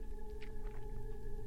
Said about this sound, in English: The creature whined. It was a high-pitched, mewling sound that made the skin of my neck itch.